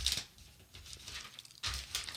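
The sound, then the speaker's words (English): Thin, new Bible pages being peeled apart while turning to Revelation chapter 13, heard as crisp papery rustles and crinkles: a sharp burst at the start, softer scratchy handling in between, then a second loud rustle. “The pages are still so new on this new Bible, they're hard to peel apart.”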